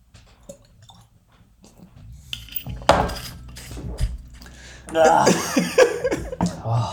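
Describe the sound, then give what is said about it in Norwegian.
Glasses clink together in a toast, a sharp knock followed moments later by a brighter ringing clink, with faint murmuring and light chuckling around them. “Ok, si ny skål. Skål.”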